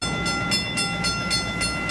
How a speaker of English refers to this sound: The first trolley rolled out of Tufts Station before 5 a.m. this morning as a cheering crowd looked on.